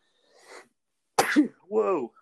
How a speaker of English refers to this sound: Whoa. That sneeze came out of nowhere.